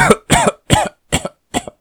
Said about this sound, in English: he whispers, followed by a few violent coughs.